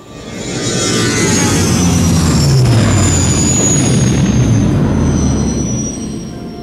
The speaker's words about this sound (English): The Jawa rises and again gestures skyward. Just then, a starship wildly buzzes the field upside down.